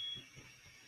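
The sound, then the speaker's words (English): A home fire alarm sounds briefly: a faint, high-pitched electronic beep at the very start, then fades into a low hiss with soft rumbling. No one talks. “Where's that coming from? My fire alarm going off? Yeah, it is.”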